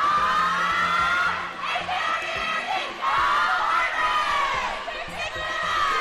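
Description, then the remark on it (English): A crowd of girls cheers and shrieks loudly and continuously while jumping up and down at the edge of a pool, cheering for their teammates in the relay and heats, their high-pitched voices overlapping in excited, rising calls that swell and dip over several seconds. “They are jumping up and down at the edge of the pool, cheering and shrieking for their teammates in the relay and during all the heats.”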